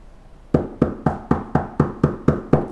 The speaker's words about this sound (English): I heard the knock on the door. It's immigration.